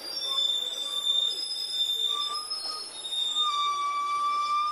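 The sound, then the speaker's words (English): High, sustained squealing tones from three garbage trucks going down the hills through a neighborhood slide and overlap, wavering in pitch like whale song, over a steady low rumble of rolling wheels on metal; no one talks during the sound. “This is me following a whale / garbage truck through my neighborhood, going down the hills, and it starts doing whale songs to me.”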